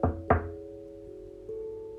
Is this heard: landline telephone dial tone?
no